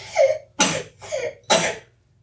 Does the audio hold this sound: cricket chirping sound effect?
no